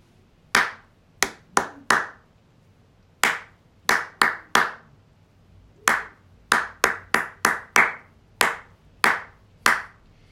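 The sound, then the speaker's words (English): Crisp hand claps tap out the rhythm of the words of a poem, said silently rather than aloud, in short, uneven bursts with brief pauses between phrases, about seventeen claps in all, with no voices. “We're going to do the poem again, but this time we're going to do the words in our head and still do our claps.”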